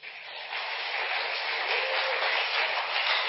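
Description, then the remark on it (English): An audience breaks into steady applause for a group of six people, a dense wash of many hands clapping that swells in the first half second and then holds at an even, fairly loud level. “Please, clap for them.”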